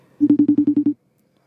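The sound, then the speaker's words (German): A quick run of about eight short, evenly spaced electronic telephone dialing beeps as a dropped phone call is redialed, sounding clearly and alone before falling silent. “Ich versuche mal kurz die Verbindung wieder herzustellen.”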